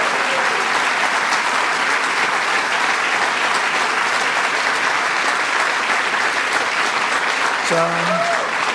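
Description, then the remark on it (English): A large crowd at the White House applauds steadily and loudly as Donald Trump holds up a copy of the Washington Post headlined 'Trump acquitted'. A dense, unbroken roar of clapping holds for the whole stretch, with a voice briefly rising above it near the end. “He's holding it up in triumph right now, showing it to everyone to applaud.”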